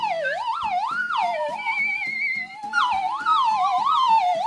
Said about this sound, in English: This one's mine. I bought it. This is an incredible slide whistle. You should do this. This is an incredible one.